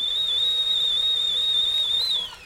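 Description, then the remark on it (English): A kettle whistles with a steady, shrill high-pitched tone that wavers slightly, holds loud for about two seconds, then tapers off. No one speaks. “Put a kettle on, Dan.”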